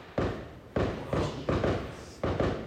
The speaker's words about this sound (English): Fireworks. Yeah.